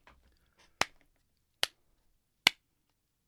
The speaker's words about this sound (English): You guys get my golf clap of the day. That was well done.